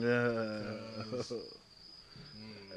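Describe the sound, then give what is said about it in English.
A crickets sound effect: crickets chirp in a steady, continuous high-pitched trill throughout, moderately loud, while a low voice hums or murmurs underneath at the start and again near the end. “This is where you put the crickets in for me.”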